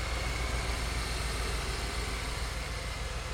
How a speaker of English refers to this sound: But here's our supercharger. There you it can is. Hear a little bit of that supercharger whine. And I love the Ford Motorsports data plaque on it.